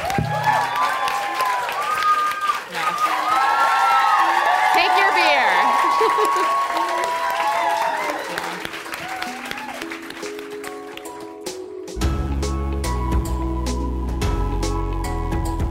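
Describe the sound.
A live show audience applauds and cheers loudly for about twelve seconds, with voices and shouts mixed into the steady clapping, before a bass-heavy music track cuts in.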